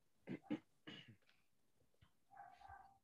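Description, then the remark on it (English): Dogs bark in a quick cluster of three or four sharp yaps, somewhat faint, then a drawn-out high-pitched whine follows. “My dogs are not going crazy. Maybe they see a Wendigo.”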